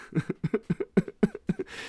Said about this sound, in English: I'm coughing and everything.